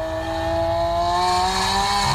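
A sports car engine revs hard and climbs steadily in pitch, loud, with a rough, growling exhaust note throughout and no voices.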